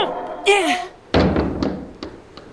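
A door slams shut with a heavy thunk, followed by a few quieter rattling knocks as it settles. Just before, a short high vocal cry rises and falls.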